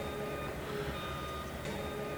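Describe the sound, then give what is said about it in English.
Dump trucks and tractors drone steadily as they plow debris along muddy makeshift roads while a protest camp is dismantled in early February, a low engine rumble under a constant high mechanical whine, with no voices. “At camp in early February, dump trucks and tractors plow debris along muddy makeshift roads as protesters hurry to dismantle the Cheti Chicoan camp's tent city.”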